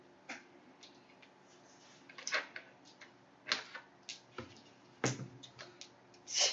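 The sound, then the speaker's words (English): A scatter of sharp plastic clicks and clatters as dice are rolled for a dodge in a game, tumbling and bouncing on a hard surface, irregular bursts with quiet gaps between, and no one speaking. “So, go ahead and roll your dodge. Okay. and tell me the highest number. Let's pick a different color dice this time.”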